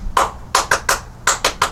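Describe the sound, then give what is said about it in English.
Seven sharp hand claps, made to call dogs, in two quick rhythmic runs, four then three, loud and crisp with brief pauses between, and no talking. “May not love that clapping.”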